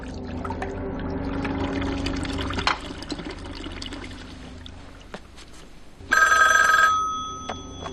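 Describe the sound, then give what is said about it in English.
A telephone bell rings once in a short, bright, loud burst near the end, following a stretch of splashing, pouring water-like noise with no one talking. “He's gonna phone Wendy up in a few minutes to tell her.”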